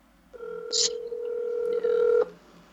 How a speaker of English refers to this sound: He not going to pick up the phone. Yo. Oh, first ring.